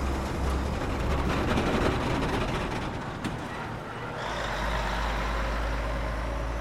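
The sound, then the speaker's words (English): A convoy of over 20 heavy military trucks, jeeps and other military vehicles rumbles past one after the other, with loud, continuous engine noise and a deep low roar that shifts as one vehicle gives way to the next. No one speaks. “A convoy of over 20 trucks drove past.”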